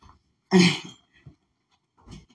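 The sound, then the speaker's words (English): A child blows his nose: one loud, rough, blustery burst, followed by a couple of quieter sniffly snorts after short pauses. “I felt myself getting a little frustrated by you blowing your nose.”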